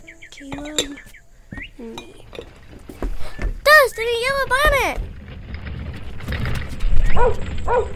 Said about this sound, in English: Hush, dogs.